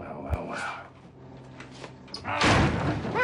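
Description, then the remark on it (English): A heavy door slams shut with a loud, ringing metallic clatter as Locke locks Sawyer in the brig, after an earlier short dull thud and some faint shuffling. “With that, Sawyer's entered the brig, getting locked in by Locke.”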